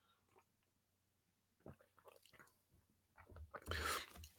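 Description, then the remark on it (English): Quiet mouth sounds of someone taking a sip of coffee: soft wet smacks and swallows, then a brief louder slurp near the end. No one speaks. “I'm going to have a sip of my coffee when I get it back.”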